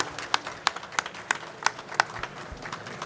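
Applause from a small audience for a speaker, with a few sharp claps landing in a steady, evenly spaced rhythm over a softer bed of scattered clapping, moderately loud.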